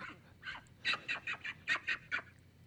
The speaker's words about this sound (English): What was that? Is that a baby pig out the window? There's a pig out the window now.